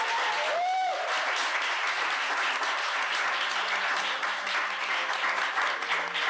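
Sustained audience applause, a dense, steady wash of many hands clapping throughout, fairly loud and close, with a brief whistle near the start.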